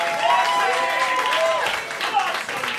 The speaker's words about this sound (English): By the way, if I could all ask you to do me a wee favour, could you give a big round of applause